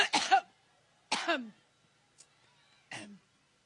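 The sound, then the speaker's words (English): A series of harsh, raspy coughs from Hillary Clinton during a coughing fit at a rally in Cleveland, in short bursts with brief pauses between them, ending in a lighter final cough, fairly loud with no talking. “had another one of those famous coughing fits at a rally in Cleveland yesterday.”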